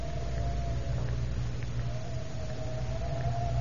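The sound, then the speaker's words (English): Wind howls steadily on a windy afternoon at the Tower of London, around 4 o'clock, a thin wavering whistle riding over a constant rushing roar and low rumble, with no voices and no breaks throughout. “It is 4 o'clock of a windy afternoon, shortly before closing time.”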